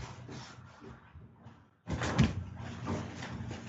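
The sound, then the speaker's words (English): A heavy barn door rumbles along its track, then slides shut with a loud, grinding roll that lingers to the end. No one speaks. “Now you should close the barn door.”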